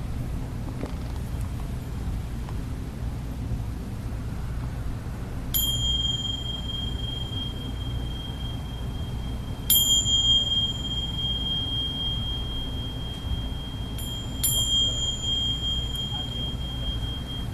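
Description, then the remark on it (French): A meditation bell rings three times at spaced intervals, each clear metallic strike leaving a long, pure sustained tone that slowly fades, over a low, quiet hum. “Ésotérique dans le son de la cloche, là, c'est juste pour dire que vous êtes libérés.”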